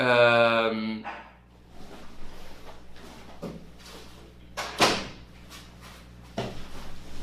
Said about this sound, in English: Sorry, my dog was barking. I had to shut the door.